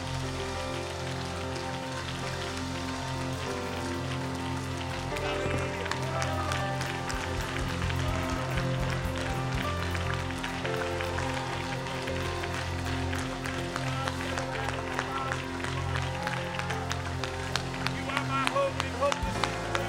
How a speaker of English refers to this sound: But there's no way I'm going to give Matthew Stafford a louder hand clap than I am Jesus Christ. So one more time, let's give Jesus a hand clap of praise.